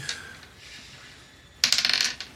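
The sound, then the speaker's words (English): Dice clatter across a hard tabletop in a quick burst of sharp, bright clicks that bounce and settle within a second, fairly loud after a quiet opening with one faint tick. “Nice roll. Dice.”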